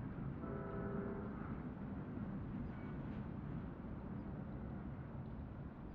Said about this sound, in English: Oh, look, way out there. See that movement against the hill? Yeah, what is that? It's a train. Listen.